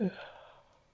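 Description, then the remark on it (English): A single human yawn that opens with a brief voiced tone and trails off into a long, breathy exhale, fading over about a second. “Can't stop yawning, dude.”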